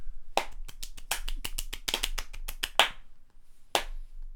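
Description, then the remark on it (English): Quick, sharp claps under a table, a rhythmic run of about a dozen hits followed by two louder, more spaced slaps. No one speaks. “Well, you were clapping under the table, so...”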